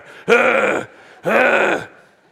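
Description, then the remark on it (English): A person imitates a dog on a leash choking and coughing on its collar: two loud, strained, raspy hacking bursts, each about half a second long, separated by a brief pause. “But he's just choking himself on this collar, right? And he's, he gets to the point where he chokes himself so bad he starts coughing.”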